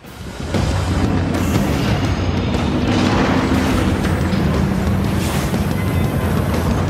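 A massive siege engine, the war rig, collapses and cracks in two in the video game Destiny 2, a piece of it falling into the ocean: after a brief lead-in, a loud, heavy roar of crunching, groaning debris and deep rumbling booms sustains for several seconds without letting up.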